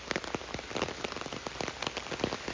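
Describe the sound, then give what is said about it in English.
Steady rain patters on an umbrella and falls through trees while someone walks outdoors, a dense, hissing wash dotted with sharp, irregular drops, fairly loud and continuous with no voices. “Walking in the Rain? One of My Favorite Ways to Find Respite”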